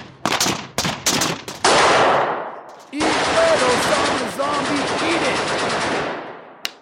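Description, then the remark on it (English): Gunfire at an outdoor shooting range: a few sharp, loud shots crack out in quick succession, then a dense, sustained burst of rapid fire roars for several seconds before ending with one last short crack. “Outdoors, and he's challenging folks to shoot-offs again, so I hope you brought your eagle eyes.”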